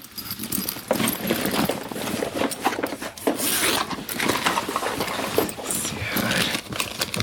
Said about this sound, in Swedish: Okej, då tar jag bara fram min matsäck.